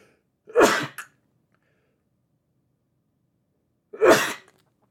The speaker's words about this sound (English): Hang on 1 second. I'm going to sneeze.